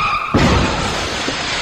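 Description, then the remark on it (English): A voice mimics a car crash: a brief high screech like skidding tires, then a loud, rough, sustained burst of noise imitating the impact, with no other talk. “Car crash.”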